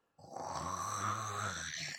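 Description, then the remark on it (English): A person imitates the roar of a tarantula monster with a sustained, gravelly growling voice lasting under two seconds, fairly loud, with no other sounds around it. “It makes, like, a legit roar sound.”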